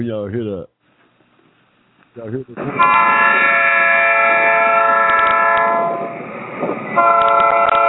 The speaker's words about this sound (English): when y'all hear that horn, y'all, that's that train coming down the line, y'all. That's that train coming down the line.